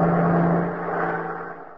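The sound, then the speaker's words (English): A bus, the fourth to pass by, drives past, its engine droning with a low steady hum and broad road rumble that eases slightly, then swells again. No one speaks. “Oh, that's the fourth bus that's passed us by, Riley.”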